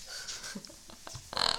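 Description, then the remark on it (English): A female dog gives a few soft, muffled boofs, low and breathy rather than full barks, ending in a sharper huff. Quiet, with no talking. “My dog is boofing.”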